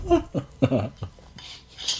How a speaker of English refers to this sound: It was my pizza. The fork I was eating my pizza with, it fell off the plate.